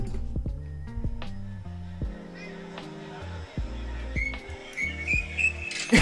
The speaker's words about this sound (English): I was whistling.